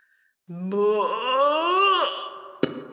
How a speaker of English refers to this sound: As he cartwheeled through the air, the calm birdie tweets and distant rumble of traffic were shattered by the loudest and longest and deepest burp that Ben, Cassie and Alfie had ever heard.